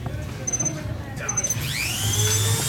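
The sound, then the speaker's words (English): A high-pitched Dremel rotary tool whines and climbs in pitch as it spins up and drills into a Nintendo Game Boy, over a steady low hum, with faint electronic beeps from the Game Boy early on. “Nintendo Game Boy vs. Dremel”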